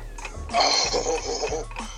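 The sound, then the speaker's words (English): A ticking 30-second countdown timer runs steadily, its regular clock-like ticks layered over a busy musical bed with a low pulsing beat, moderately loud and without any talking. “Your clock starts right now.”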